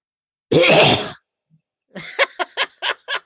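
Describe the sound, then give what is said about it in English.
A person imitates a sheep coughing: one loud, harsh, rasping burst, a brief pause, then a quick run of short, choppy hacking pulses. “A sheep coughing. I don't think I've ever heard that.”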